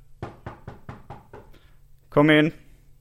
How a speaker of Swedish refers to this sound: Okej, men då knackar jag på nu då.